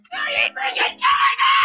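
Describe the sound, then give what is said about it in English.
A loud, shrill scream rings out in three sharp bursts, the last one long and sustained, a canned sound effect played from a prepared soundboard, with no talking around it. “Did he just scream? Are you freaking kidding me? No, that's a soundboard that I have prepped.”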